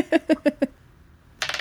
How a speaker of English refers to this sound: Ooh, dice going off the table. Five. Five.